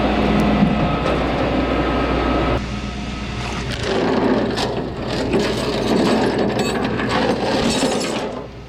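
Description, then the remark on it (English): Metal tow-truck chains rattle and clank continuously during a tow, in a dense, noisy jangle with scattered sharper clinks, steady and fairly loud throughout, with a low mechanical rumble underneath and no voices. “Because I love the sound of chains.”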